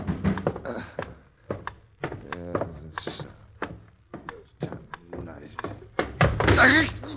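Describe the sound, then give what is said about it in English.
A person hurrying downstairs in the middle of the night to answer a pounding on the door stumbles into a chair in the dark: a few dull thumps and a scraping clatter near the end, with people talking throughout. “Rat, that chair got no business of being here.”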